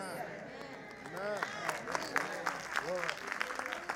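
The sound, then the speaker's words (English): Light, scattered audience clapping that never builds into strong applause, with voices calling out over the thin patter of hands. “Your clapping was tepid because you haven't seen personal application.”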